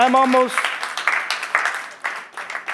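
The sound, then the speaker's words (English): A brief vocal sound opens, then a crowd breaks into scattered, irregular hand clapping to encourage the speaker, a moderately loud burst of many overlapping claps that continues unevenly until the end. “Give me a hand clap to encourage me.”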